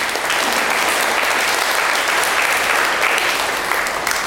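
A group of people claps steadily for several seconds for someone who recited Psalm 21, verse 2, a dense, even patter of many hands at a consistent loudness with no voices on top.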